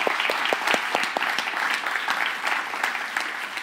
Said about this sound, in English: we want to show appreciation by giving her a round of applause for all the work she has done as well.